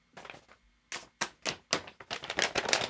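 Papers being shuffled and handled up close: a quick series of crisp, rustling bursts, starting soft and growing busier and louder toward the end, with no talking.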